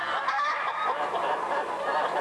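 A duck quacks in a steady, raspy stream of calls that runs for about two seconds, fairly loud, with no talking over it.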